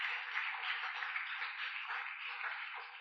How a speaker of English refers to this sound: Clap your two hands for them.